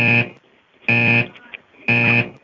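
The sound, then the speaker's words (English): A loud, harsh electronic alarm blares in three short buzzing blasts, evenly spaced about a second apart, with brief quiet gaps between them. “Do you know what this alarm's for?”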